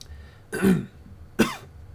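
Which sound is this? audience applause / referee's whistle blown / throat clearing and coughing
throat clearing and coughing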